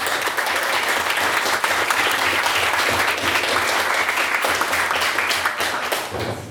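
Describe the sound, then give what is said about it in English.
Steady, loud applause from a debate audience, a dense wash of many hands clapping that holds its level throughout and thins slightly at the very end. “Hello, and again, another round of applause for me.”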